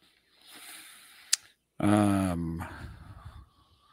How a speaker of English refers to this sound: Hey, there's a dog. There is a dog.